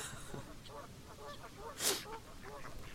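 Several ducks quack repeatedly on the water, their nasal calls overlapping in an uneven chatter, with a brief splashy burst midway over a low outdoor rumble.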